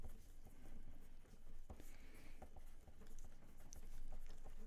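Several pencils tap on a table in an irregular, overlapping patter of light clicks, fairly soft and steady throughout, with no one talking.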